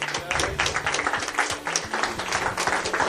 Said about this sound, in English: Thank you, everyone, for coming here. Thanks. Extra applause for